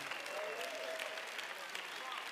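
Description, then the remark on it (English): An audience claps their hands to give God praise, a steady, dense wash of applause that holds at an even loudness throughout, with a faint voice rising underneath the clapping. “And if you believe it and receive it, clap your hands and give God praise, right?”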